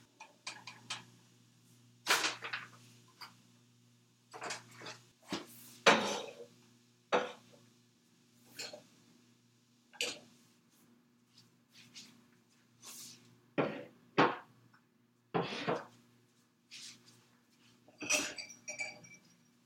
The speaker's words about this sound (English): This is a nice time to give your noodles a little bit of a stir. We'll make sure they're all taking a nice bath in that hot water.